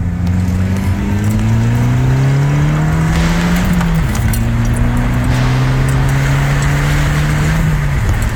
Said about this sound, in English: There we go. Last month's car sound of the month giveaway winner.